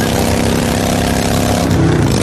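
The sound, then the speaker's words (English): A motorcycle engine runs loud, a steady low rumbling drone with a rough throb that rises slightly toward the end, with no voices. “And this right? is what that same commercial sounds like on your motorcycle.”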